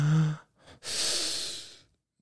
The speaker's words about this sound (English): You can do this wherever you are. Keep your eyes open if you're driving, but whatever else you're doing, just take a deep breath in. One, two, three.